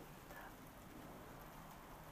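rain falling outdoors

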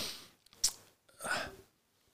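sniff into the microphone

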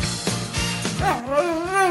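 dog whimpering and barking

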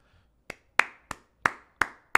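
hand clapping

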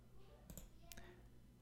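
computer mouse clicking

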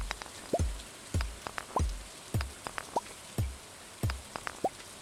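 rain falling

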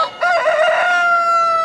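chicken crowing

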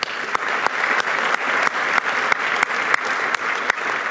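audience applause

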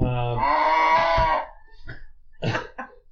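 cow mooing

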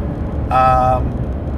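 road traffic passing by

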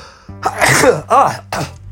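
sneeze

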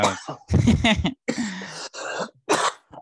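coughing

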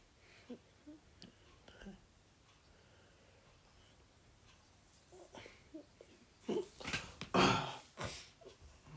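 coughing

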